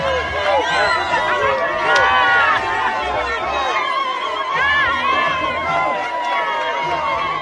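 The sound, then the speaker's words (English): Thousands of party supporters in a stadium cheer loudly and continuously as a motorcade arrives, with many high, warbling ululations rising and falling over a dense roar of voices, energetic throughout. “thousands of party supporters cheering and ululating when his motorcade made its way into the stadium.”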